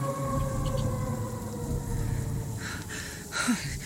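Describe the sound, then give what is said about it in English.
A long, steady creature's howl holds one low, droning pitch with a rich harmonic edge throughout, while rough, noisy bursts flare up over it near the end. “That was the howl I heard earlier.”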